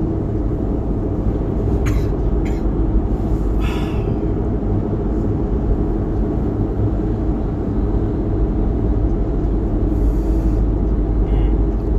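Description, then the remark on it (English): A steady, heavy low rumble of road noise fills the inside of a car moving in traffic, with a few brief hisses and knocks rising now and then over the constant drone. “Mid-traffic. Can I pull over here?”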